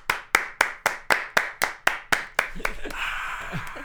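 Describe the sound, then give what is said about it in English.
An audience welcoming a new radio host: a run of about ten sharp, evenly spaced claps in a steady beat, then the clapping loosens into a brief wash of applause with a few voices mixed in. “The crowd goes wild.”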